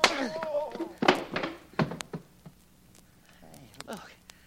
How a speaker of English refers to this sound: I only got one good arm and I knocked this guy stiff.